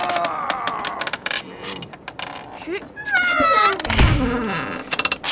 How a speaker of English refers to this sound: We'll be able to squeeze through this door and get inside. Coming, coming. Where's this door, then? Right here. Hold on. Here we go. Just have to pry this side door open. Lend a hand.